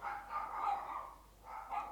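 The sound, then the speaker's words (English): A person's own pet dogs bark, muffled and fairly quiet, in two bursts with a short lull between them. No one is speaking over the barking. “Sorry, my dogs are barking because they're brain damaged.”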